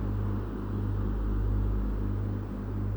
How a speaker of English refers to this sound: It's called white noise. No, she's hemi-syncing us. Wait. Gateway Voyage. This is it.